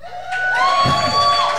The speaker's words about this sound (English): We want to remind you guys in the live studio audience, you want to give a cheer real quick?